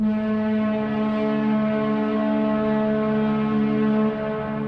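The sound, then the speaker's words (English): The noon town whistle of Scotia, a Pacific Lumber company town, blows to tell workers it's time for lunch: a loud, steady whistle without a break, a single sustained low-pitched tone rich in harmonics, holding constant pitch and volume from start to finish with no voices. “At noon, the town whistle still blows, telling the workers it's time for lunch.”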